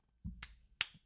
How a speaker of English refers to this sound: Clap. Clap. Clap. Clap.